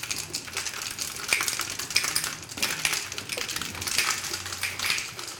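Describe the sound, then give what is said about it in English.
A Down East unfiltered carbonated hard cider being shaken and foaming, giving a steady, rapid clatter and rattle with bright, crisp edges that swells in bursts, with no one talking. “Yes, it's foaming pretty seriously as we shake it.”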